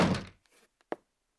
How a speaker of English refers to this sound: I'm just going to close the door here.